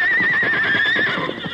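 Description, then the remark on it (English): Nervous horses, Silver and Scout, ridden by the Lone Ranger and Tonto steadily up the gentle slope of a hill, whinny loudly with a wavering, sustained neigh while hooves clop in a steady rhythm beneath it, with no voices. “As the Lone Ranger and Tonto rode steadily up the gentle slope of a hill, their horses showed increasing signs of nervousness.”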